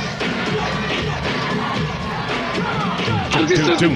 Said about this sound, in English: This doesn't translate well because you have to, people listening to the podcast, you have to watch the video because the Apollo crowd is known for being boisterous and they were losing their freaking minds